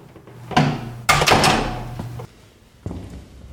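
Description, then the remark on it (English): A door is pulled shut with a heavy thud, followed by rattling mechanical clunks and a final sharp click as it locks. No one speaks. “Now remember, for security reasons, we have to lock readers in.”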